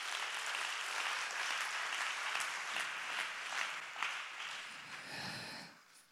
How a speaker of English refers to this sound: Why don't you clap your hands and thank God for revelation.